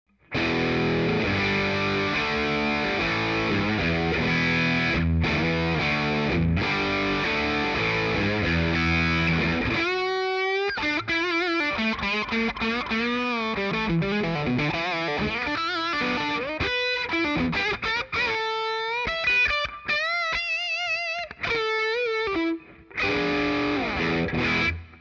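An overdriven electric guitar with the gain (distortion) control turned up slightly, to about 11:30, first strumming thick distorted chords, then shifting into sustained single-note lead lines with vibrato, loud with no voices.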